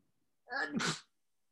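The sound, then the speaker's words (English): A single sharp sneeze bursts out of near silence, a quick breathy intake followed by a loud explosive release lasting about half a second. “Excuse me, I'm sneezing.”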